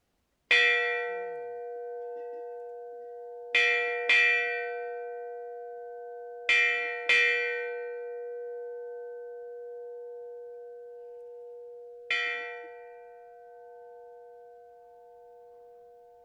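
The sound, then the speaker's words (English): A bright bell is struck six times (six bells, the sixth bell of the fifth watch, at seven PM), some strikes close together in pairs, each ring lingering and fading into a sustained hum between strikes. Clear, with no talking. “6 bells.”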